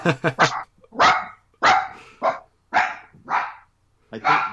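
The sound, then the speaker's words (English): A dog barks loudly, about eight sharp barks in an uneven rhythm, starting with a quick triple burst and then single barks spaced apart. “No, it's usually my dog who does this, so I'm going to have to cut that part, I guess.”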